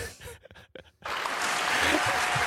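A round of applause sound effect kicks in after a second of scattered short noises, then a dense wash of clapping that stays loud and steady to the end.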